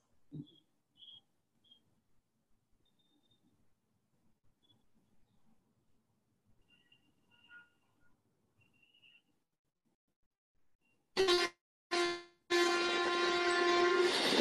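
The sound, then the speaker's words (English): After a long stretch of faint rumbling, a passing train's horn blares loudly, first in two short blasts, then in one long sustained honk that runs to the end. “We all know about the trains in India and the ambiguity associated with it.”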